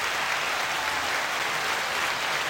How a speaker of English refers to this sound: What's C? Well, that's the applause, but you have to hold it down.